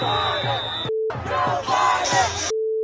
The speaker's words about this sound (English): Joe Biden! This must be the NASCAR crowd. And we had to bleep because over and over again they're doing the F Joe Biden, F Joe Biden chant.